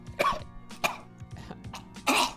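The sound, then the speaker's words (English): A person mimics a dog coughing after inhaling smoke: three harsh, raspy coughs, the last one longest and loudest, with short gaps between them and no talking. “He just kind of coughs, and then he kind of looks at you, and he sticks his tongue out.”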